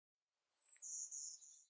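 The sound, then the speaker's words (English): A golden-winged warbler sings a single short, high, buzzy song: one thin buzzing note followed by a few slightly lower buzzes, heard alone. “And the golden-winged warbler.”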